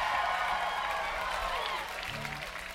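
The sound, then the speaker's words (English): A large festival crowd cheers and applauds loudly and steadily, a dense wash of clapping and voices that eases slightly toward the end, with a faint tone rising briefly underneath. “This side of the crowd's a lot funner than that side of the crowd.”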